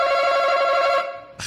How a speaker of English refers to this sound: Hands on buzzers.